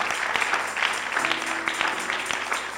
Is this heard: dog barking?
no